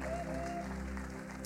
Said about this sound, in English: Let's give our worship team a big clap.